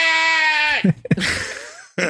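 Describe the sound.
A loud sheep bleat rings out, a drawn-out nasal 'baa' that breaks off, followed by a breathy pause and the start of another bleat.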